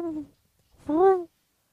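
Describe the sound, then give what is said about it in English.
A person imitates a mourning dove's coo with two soft, hooting vocal notes, a short one followed by a longer, swelling one, with no other sounds. “Morning doves don't cry. They just go...”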